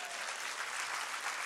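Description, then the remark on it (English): A crowd claps hands in dense, steady applause, a continuous bright wash of overlapping claps with no single beats standing out, holding even loudness throughout. “Clap your hands.”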